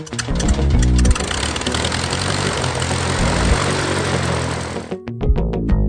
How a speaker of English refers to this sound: You're going to be hearing a little bit of background noise throughout the day, but it's just airplanes, so it's not really noise. Good background noise.